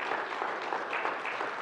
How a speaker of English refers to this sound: Can you hear they're applauding for you?